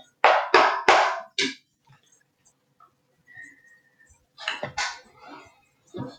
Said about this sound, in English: So you want, I'll shuffle on. You'll just hear me shuffling for a little bit and talking to my cards.